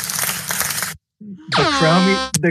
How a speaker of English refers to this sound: You got the air horn on it. Yeah, nice.